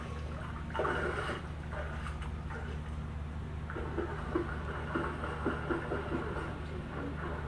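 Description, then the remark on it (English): Kids splash and play a water fight in the water later in the evening, with irregular bursts of splashing and dribbling over a steady low background hum, not very loud. “It's later in the evening, but these guys do not want to get out of the water, so I'm just letting them play as long as they want.”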